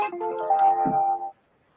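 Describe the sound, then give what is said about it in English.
A brief electronic phone ringtone plays a sustained, melodic tone for just over a second, clear, then cuts off into silence. “I think your phone agrees with you.”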